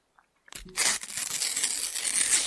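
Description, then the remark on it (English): A sticker packet is torn open in one sharp rip that starts abruptly and rasps on as a bright, crinkly tearing noise for about two seconds, with no voices. “That was a tear for the ages.”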